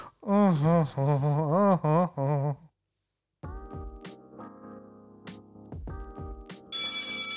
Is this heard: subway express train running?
no